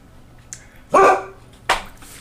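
A dog barks twice: a loud, ringing, drawn-out bark followed a moment later by a shorter, sharper one, with no talking and only a low background hum.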